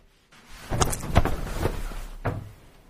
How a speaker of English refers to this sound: Wait, but something made a sound. Did you hear that? I kicked the chair.